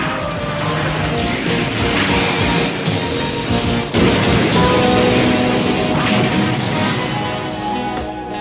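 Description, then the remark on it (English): A vehicle crashes heavily into a hillside, a loud, dense rumble of impact and tumbling debris that swells sharply midway and carries on for several seconds with no voices. “Who crashes into the hillside and screams to the ground.”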